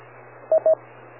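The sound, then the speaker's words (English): A radio repeater beep as a station with WIRES turned on keys up: two short, mid-pitched tones in quick succession over a steady hiss and low hum, with no voices. “Okay, and you have your wires turned on because I heard the beep, so it held you up.”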